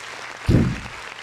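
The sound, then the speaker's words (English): A crowd applauds in a steady, dense wash of clapping, with a brief low thump swelling up partway through before the clapping carries on evenly. “One more time, round of applause.”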